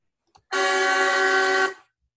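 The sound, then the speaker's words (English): A single loud semi-truck air horn blast played from a soundboard, a steady, brassy honk with rich stacked harmonics, held for just over a second before cutting off, with no talking over it. “I found a soundboard that's just semi-truck horns.”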